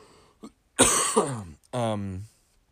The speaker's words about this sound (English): I'll probably be clearing my throat